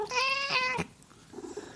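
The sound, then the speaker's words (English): A domestic cat named Toffee lets out one long, strained meow, rising and falling, followed by a quieter, low rumbling that could be soft purring. “Such a sick sounding cat.”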